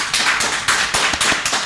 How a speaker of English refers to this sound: I'm applauding myself. I'm sorry.